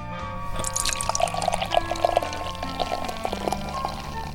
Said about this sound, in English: Here we go with the pour. Oh, my.